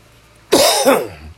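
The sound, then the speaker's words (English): A single loud cough bursts in after a brief quiet, a rough, breathy double-pulse lasting about half a second before fading into low room hum. “sorry about the cough.”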